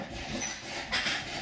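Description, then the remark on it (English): A chair in a home kitchen creaks and squeaks in short, high-pitched bursts, the brightest squeal near the end, over a steady low hiss with no talking. “And we're in squeaky chairs.”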